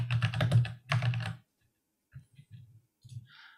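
Rapid, clacky typing on a mechanical keyboard, fairly loud, with a dense flurry of keystrokes that pauses, then thins into a few scattered, separate key clicks.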